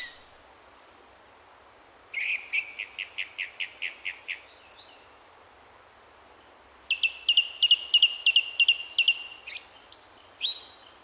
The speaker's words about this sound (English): Okay, so that's the thrush. The song thrush, we should say, not the missile thrush.